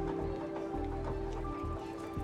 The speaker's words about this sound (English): As footsteps echo through the streets, a figure in a long coat and top hat peers out of the shadows, watching the people passing by.